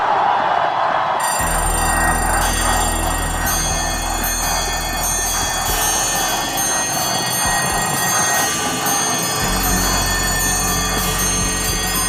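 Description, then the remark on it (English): Alarm clocks ring loudly and continuously, a dense, shrill metallic clanging that holds steady for the whole stretch with a low rumble underneath and no voices. “That's alarms. What do you use alarms for, Ron?”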